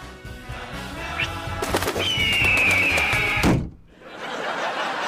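Birds coo and flutter in a loud, busy burst, with sharp thumps and a long falling whistle before a brief hush, then the noise picks up again. No one speaks.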